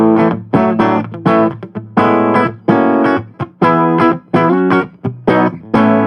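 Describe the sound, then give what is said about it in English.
Electric guitar on a full, clean tone using the full circuitry setting, playing a rhythmic run of strummed chords in short bursts with brief gaps between them, bright and moderately loud, with no one talking. “Definitely a fuller sound, but it just opens up everything tonally.”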